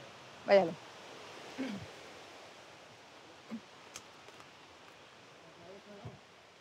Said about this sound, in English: It's raining. It's raining.